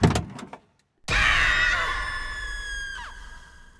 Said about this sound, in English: unbuckled his belt and opened the driver's side door.